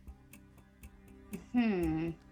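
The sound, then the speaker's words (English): A one-minute countdown clock ticks quietly and steadily, roughly four ticks a second, before a loud voice briefly rises over the ticking near the end. “1 minute on the clock.”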